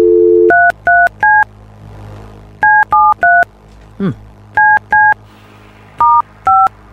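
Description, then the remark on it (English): A steady dial tone cuts off, then touch-tone keypad beeps sound in short bursts of three, with brief pauses between groups, loud, plus a faint voice murmur midway, as a phone is dialed to call someone. “is going to call someone.”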